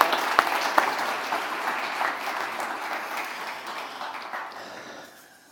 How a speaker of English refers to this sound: Can we give him a wee round of applause? Yeah.